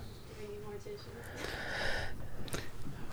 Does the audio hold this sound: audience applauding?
no